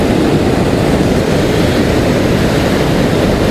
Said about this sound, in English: Because the tide is going out. And by the time they get to these rocks, it's kind of curtains for the wave.